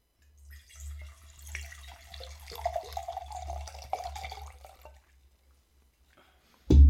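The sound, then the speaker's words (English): Red wine glugs and trickles steadily into a glass for several seconds, with a low rumble beneath, then stops; a sharp loud thud follows at the end. “And we're going to pour it so you can hear it on the mic.”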